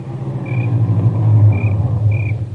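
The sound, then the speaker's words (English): A car engine rumbles low and steady, building slightly as the car drives in and pulls up at a ranch house, with a few faint high squeaks of brakes or a belt over the drone. “Maybe they didn't hear us drive in.”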